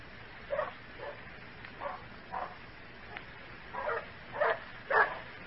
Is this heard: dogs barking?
yes